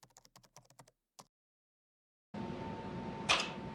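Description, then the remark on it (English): A quick, uneven run of sharp clicks from game controllers being played in a video of Tennis for Two, the 1958 video game, which has no game sound of its own, then a brief silence before steady background noise rises, broken by one louder burst near the end. “So there's no actual sound to the video game itself, just the loud clicking of controllers.”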